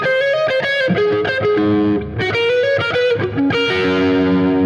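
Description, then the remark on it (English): A melodic, distorted electric guitar solo, an overdub on the right side of the stereo mix, plays a simple singable line of sustained notes and quick slides, loud and continuous over a backing band, with no voices. “But once that, you know, what that's, you know, one of the few overdubs on the album, and it appears on the right side.”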